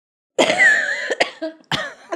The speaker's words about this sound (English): Is he going to continue talking just so I can't cough? I got a tickle in my throat just as you started that, and I thought, he sees me trying to cough. He's just going to keep going.